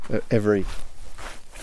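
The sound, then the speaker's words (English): A short voiced sound, then a couple of soft, wet squelching footsteps as a hiker tramps through soaking wet heather, with a slow, uneven rhythm. “It's just heather bashing and it's soaking underfoot.”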